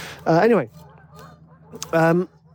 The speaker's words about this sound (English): I'm walking by the river, by the way, just in case you're wondering what all that racket is in the background. Geese.